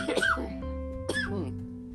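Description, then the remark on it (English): Two short bursts of coughing about a second apart, fairly loud, over a steady humming tone in the background. “Just a little more cough.”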